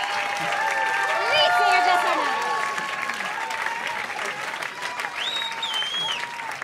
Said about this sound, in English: They couldn't hear you over the crowd